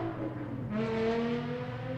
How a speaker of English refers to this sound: I bet you the person driving that car was really short.